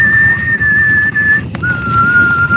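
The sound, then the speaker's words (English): A steady, high whistled tone holds for over a second, breaks briefly, then resumes slightly lower, over a dense low rumble of background noise. “my wife was telling me, she's like, hey, listen to the whistle.”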